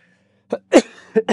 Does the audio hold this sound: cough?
yes